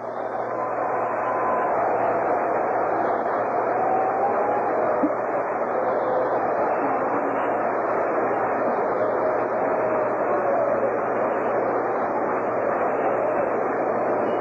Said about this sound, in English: We've got a round of applause now for the great pitcher, Bob Gibson.